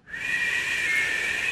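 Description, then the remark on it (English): A breathy, airy whistle made with the teeth rather than the lips, the tongue against the top teeth, holds a steady high tone with a hissy edge for about a second and a half, fairly loud, with no talking. “Most people whistle with their lips, but I can't do that, so I have to use my teeth.”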